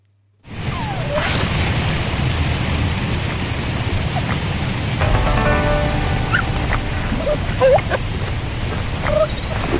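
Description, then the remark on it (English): Badgers calling in a video game: repeated yelps, squeals and chattering cries, some high and whining, scattered over a steady rumbling background of noise with no talking. “All right, those are not dogs that you're hearing. They are badgers.”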